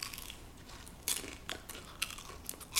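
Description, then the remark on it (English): Crunching as someone bites into crispy fried taquitos, with about five sharp, crackly bursts spaced irregularly over a quiet background and no talking. “So we just munch on these taquitos.”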